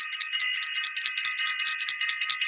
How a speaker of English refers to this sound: I want to ring the bell for Self-Invested, sending love out to all of our Self-Invested family that's out there,